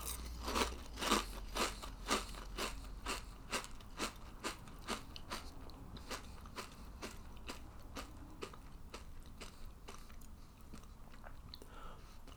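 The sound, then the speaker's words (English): Crisp crunching bites in a steady rhythm, about two per second, loud at first and gradually softening as the food turns wetter and mushier, with no talking. “Oh, the crunch balanced with the sog.”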